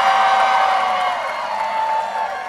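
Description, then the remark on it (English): A small crowd of about 50 people at a speech urging votes for Hillary Clinton cheers and whoops in a steady, bright roar, with a high voice or two standing out above it, before the noise slowly eases off. “And this is the crowds love. Well, the crowds is like 50 people, but the crowds love this.”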